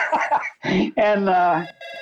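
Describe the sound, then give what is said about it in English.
A telephone rings in a few short bursts with steady tones in the newsroom at the Dispatch, a call from Coach Woody Hayes, interleaved with voice-like vocal sounds that may be someone mimicking the ring. “the phone's for you.”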